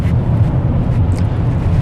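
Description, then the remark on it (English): Loud, steady wind buffeting a microphone on a windy day, a deep rumbling roar concentrated in the low end with constant fluttering turbulence and no pauses. “And you guys may notice the wind. It's another windy day.”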